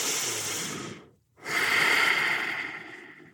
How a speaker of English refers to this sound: Inhaling and exhaling through your nose, you're going to drag the breath along the back of your throat to create this hissing sound or the ocean sound.